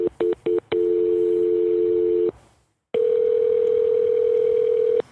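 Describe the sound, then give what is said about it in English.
As someone calls a supervisor on the phone, three quick beeps from a phone line give way to a steady, loud dial tone that cuts off, then after a short silence a second continuous tone hums on at a different pitch. “Let me get my supervisor on the phone.”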